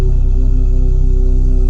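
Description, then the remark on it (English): Two steady humming tones for the first and second chakras sound together, one an octave above the other, sustained and fairly loud with a slight pulsing texture and no speech. “Both chakras at the same time humming.”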